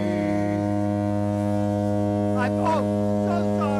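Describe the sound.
A ship's horn on a love boat blows one long, loud, unbroken low blast with a rich buzzing tone, lasting the whole time, while a voice briefly speaks underneath it toward the end.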